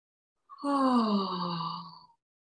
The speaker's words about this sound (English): And so when you yawn and you feel that actual intake of your throat opens up and stretches. So you get a stretch on the inside of your throat and you're releasing tension. It's really lovely. So it's this yawn.